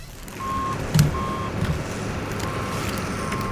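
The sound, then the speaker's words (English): A truck's reversing alarm beeps in a slow, steady repeating pattern over a low engine rumble, loud, with no talking. “do me a favor and back that fat truck up.”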